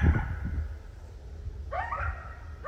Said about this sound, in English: Two coyotes from a pack that lives just down the hill from me. I live in a pretty rural area on the edge of the city of Bellingham.